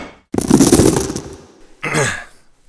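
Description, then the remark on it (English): Bolt cutters snap through a chain on a warehouse door with a sudden loud crack, followed by about a second of clattering metal, then a second shorter burst of rattling. No one speaks. “All right, well, why don't you go ahead and pop that chain off the door and we'll open it up and see what's going on in this bad boy.”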